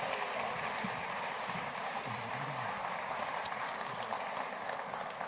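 A crowd claps steadily for several seconds to thank helpers, a dense, even wash of many hands with no individual claps standing out and a faint murmur of voices underneath.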